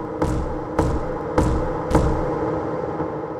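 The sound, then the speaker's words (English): Four heavy knocks on a bedroom floor at different points, evenly spaced about half a second apart, each a dull thud over a steady background hum, then the knocking stops and only the hum remains. “It moved out from under the bed and started knocking different points in the floor.”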